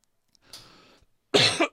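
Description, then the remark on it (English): A harsh cough bursts out loudly after a softer breathy throat sound, with brief silence between; no one speaks. “Right, that cough's come back.”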